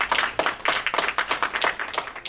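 A round of applause from a group for a guest from Finland, steady rapid claps blending into a dense, fairly loud patter with no voices over it.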